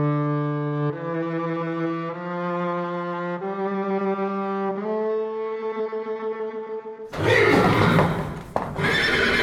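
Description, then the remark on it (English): A horse lets out a long, loud whinny lasting several seconds, its pitch wavering in steps, followed by a rough, noisy burst of snorting and scuffling. No one speaks. “Now, you maybe have seen a couple of headless horsemen up the hill below the castle, but what about a headless horse?”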